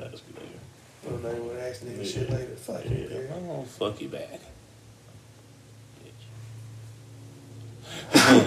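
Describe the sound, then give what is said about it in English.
Someone sneezes once, loud, in a sudden sharp burst right at the end, after a stretch of talking voices and a quieter lull. “Bless you.”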